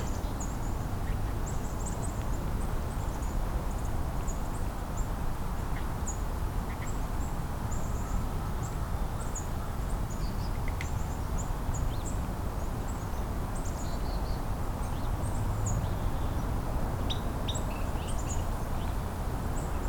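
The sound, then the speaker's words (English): A crow caws a few times in the distance, harsh calls set against a dense, steady wash of outdoor noise with scattered high-pitched chirping from small birds. “Oh, here's our first crow of the day. It's funny, just as I see one nearby, I hear one in the distance.”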